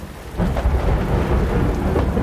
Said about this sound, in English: As I lay on the ground, I watched the storm develop. I remember hearing the thunder define the far reaches of the valley as the storm passed over me, drenching me.